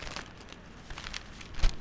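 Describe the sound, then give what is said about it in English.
Paper crinkles and rustles as a crumpled horoscope, found in a body's left hand, is handled: a quiet run of irregular crackling bursts with a slightly louder crunch near the end, and no voices. “What's this crumpled in his left hand?”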